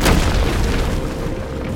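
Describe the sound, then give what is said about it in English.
A heavy crash of rock cascading from cave walls as Ogun lunges forward bursts out at once, then settles into a steady, deep rumble that keeps rolling for the rest of the moment with no voices. “He lunged forward intuitively, breaking a cascade of rock from the cave's walls.”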